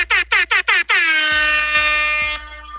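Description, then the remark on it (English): A loud air horn sounds four short rapid bursts, then holds one long sustained blast for about a second and a half before cutting off, with a few low thumps underneath. “We love the air horn.”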